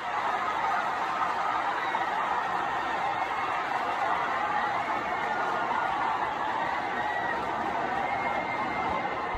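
A large stadium crowd roars and cheers continuously as a cat falling from the stands is caught in an American flag. The dense, steady wall of voices and applause stays loud throughout, with no single speaker standing out.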